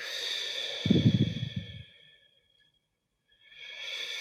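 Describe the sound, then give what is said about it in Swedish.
A single deep, breathy exhale through the mouth after a breath taken in through the nose and held, during a breathing exercise; fairly loud, lasting about a second, then quiet; a faint steady tonal hum sits in the background before and after. “Ta ett djupt andetag in genom näsan. Håll. Gå ut genom munnen.”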